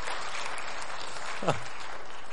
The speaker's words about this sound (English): Wow. Yes, that deserves a hand clap.